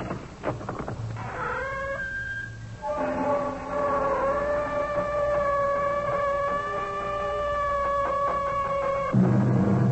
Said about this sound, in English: The sound of our door is not unlike what greeted the ear of the famous archaeologist Howard Carter when he opened the door of Pharaoh Tutankhamun's tomb.